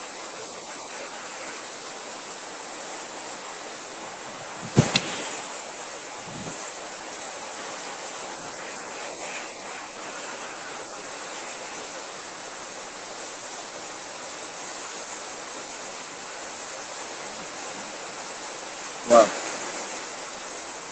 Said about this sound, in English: The network is not too good. Yes, the rain is falling.